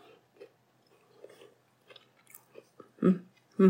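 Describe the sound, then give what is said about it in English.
Chewing of crusty soda bread that is crunchy on the outside, with irregular crunchy bites that build to two loud, crackling chomps near the end. No one speaks. “I'm sorry, I'm eating again. I couldn't stop eating it.”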